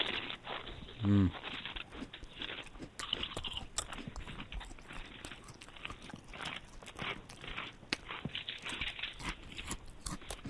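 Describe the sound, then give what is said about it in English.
Steady crunching of dry Cheerios cereal being chewed from a bowl during a one-minute crunch, a continuous stream of brittle crackles and munches with no pause, heard alone with no talking. “That was a minute crunch.”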